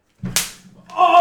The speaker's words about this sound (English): I slapped him and like clipped him, and he was just like, oh!